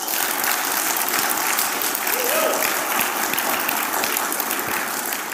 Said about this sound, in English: I mean, can we just honor that? Can we give them a round of applause for that?